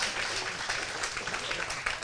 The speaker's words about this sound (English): So I'm pleased to announce that we have a new service time coming in fall 2018. Let's clap for that now. Roaring and vigorous applause.